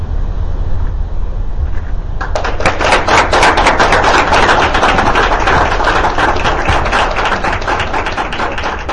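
A low rumble gives way to a burst of sustained applause, many hands clapping rapidly and loudly in a dense, crackling wash that continues steadily to the end.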